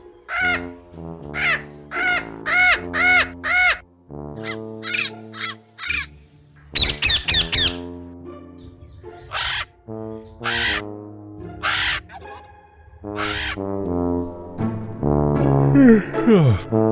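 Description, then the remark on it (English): Loud, harsh parrot calls repeat in quick bursts and squawking phrases, some grating and some more tonal. The calls are clear and continue for several seconds with brief gaps between them. “We all know what day parrots sound like.”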